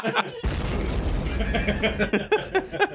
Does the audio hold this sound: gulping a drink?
no